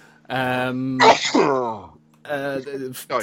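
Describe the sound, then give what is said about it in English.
A single sharp sneeze bursts out, set between stretches of voiced talk on either side. “Bless you.”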